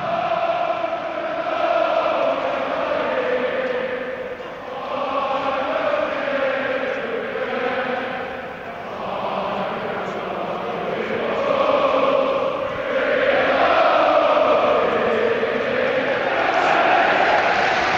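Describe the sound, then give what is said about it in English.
A football crowd of returning fans at the Medeski Stadium cheers and roars in a steady, loud wash of voices for about eighteen seconds as the match gets underway, swelling and dipping in waves with chant-like tones rising from the mass. “Well, fans are back and we're underway at the Medeski Stadium.”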